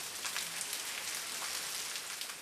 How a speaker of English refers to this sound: I remember me saying to him, it's like maravolian, it's like rain, the sound of these ducks beating their wings. Sounds like rain.